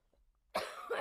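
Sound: cough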